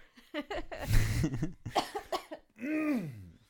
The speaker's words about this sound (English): And you're coughing at the same time as me?